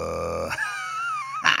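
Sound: whale call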